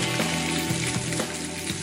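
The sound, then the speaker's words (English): Canadian bacon fat sizzles steadily in a hot pan, a dense, crackling hiss with scattered pops, fairly loud, with no voices over it. “Let that sizzle out. Yeah. All that fat, get that fat out.”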